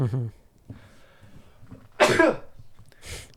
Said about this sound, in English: First sneeze on the podcast.